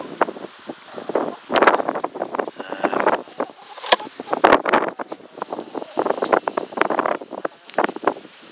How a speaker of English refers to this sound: I don't know if you can hear, the wind's certainly picked up now.